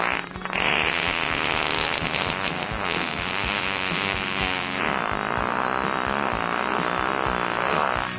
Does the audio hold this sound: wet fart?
yes